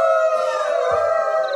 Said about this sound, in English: Lovely. And are the roving packs of wolves another perk?